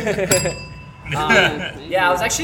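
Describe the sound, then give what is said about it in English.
A single bright bell strike rings out with a clear, lingering metallic tone that slowly fades, while people talk over and around it. “Ring the bell on that.”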